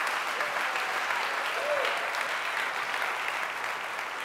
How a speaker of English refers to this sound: If you're living your life for the Lord, if you agree with that, give the Lord a hand clap of praise for the next 30 seconds.